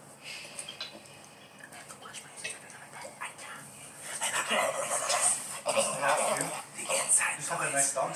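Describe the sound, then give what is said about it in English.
A dog pants indoors in quick, breathy bursts, with soft whimpering whines mixed in, growing louder and busier in the second half, with faint voices in the background. “Inside noise, because I want to hear I'm allergic to dogs.”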